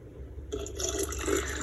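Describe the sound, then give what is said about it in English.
After a brief low hum, a young girl pours water into a reservoir, a steady splashing and gurgling stream that carries on for about a second with no one talking. “Okay, pour it in the thing. Reservoir.”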